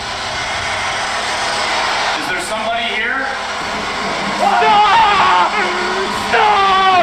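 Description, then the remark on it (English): Steady hiss of spirit box radio static in an old metal boat, broken by brief chopped bursts of garbled voice fragments and warbling tones as it rapidly scans through frequencies, loud and continuous throughout. “At this time, we decided to break out our spirit box, which rapidly scans through frequencies so that spirits can speak through the white noise.”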